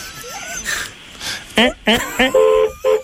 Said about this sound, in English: why don't you beep the horn three times very shortly and just say that's one for each one of your kids?